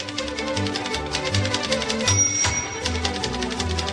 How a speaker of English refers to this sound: What are you doing? Just writing it down. Why are you typing vigorously with music playing? Well, this is how I type. It's professional.